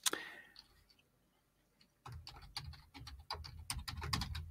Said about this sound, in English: Sorry, I was typing in my thing.